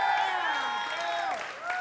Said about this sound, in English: Can you guys give her a round of applause?